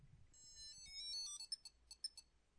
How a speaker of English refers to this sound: And I returned to Portland and realized that my mother had given me for Christmas this year in my stocking this thing called Tile, and I'm going to play the sound for you now.